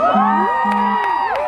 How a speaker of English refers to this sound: in front of Sonora State Congress, a large crowd was quietly waiting for updates from inside. With rainbow flags fluttering in the wind, shouts went up whenever there was a vote for the marriage equality measure being considered.